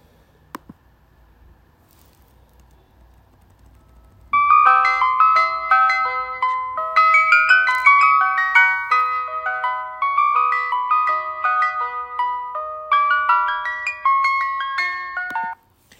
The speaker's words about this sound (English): And it's called The Entertainer. That's the name of this ice cream truck song. At 11, close to noon in my morning, this is what's right outside my door here that's just playing over and over and over again.